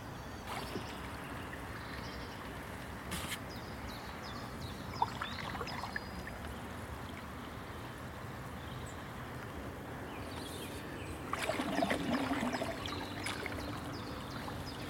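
Gentle splashing and trickling water from a canoe paddle dipping through the calm River Avon near Bath at dawn, steady, with a slightly louder burst of swishing near the end and no one speaking.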